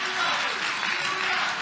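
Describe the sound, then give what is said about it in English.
A large church audience claps steadily and continuously to praise the Lord, a dense wash of many hands applauding together, with no clear individual beats standing out. “Oh, come on, clap your hand to the Lord and give Him praise.”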